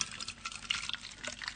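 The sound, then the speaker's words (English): A little water being poured into a small plastic bottle, heard as a quiet stream of soft splashing and gurgling bursts. It carries on steadily for the whole moment with no one talking. “Now, we all know that if I put a little bit of water in the bottle, we expect the note to go up. So, gluck, gluck, gluck.”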